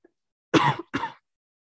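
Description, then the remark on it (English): Two harsh, raspy coughs from a person coughing after smoking, in quick succession and loud, with a brief pause between them and silence on either side. “If anybody has the cure to not coughing after smoking, please tell me.”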